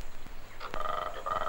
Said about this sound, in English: That high-pitched whistle is a cicada. They come on during the day.